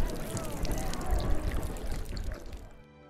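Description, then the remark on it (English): Water pours steadily from a vessel for a wounded man to drink, lasting about two and a half seconds, a bubbling, splashing trickle that tapers off abruptly at the end. “Please, water, water. Drink and be well, brother.”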